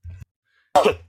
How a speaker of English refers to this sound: Sorry, that was if you got half a sneeze on there.